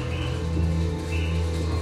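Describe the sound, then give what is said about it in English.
Low, throaty cooing of birds, a steady warbling murmur that carries on without a break for about two seconds, moderately loud, with no one talking. “Those birds humping? There might be a little bird fucking going on.”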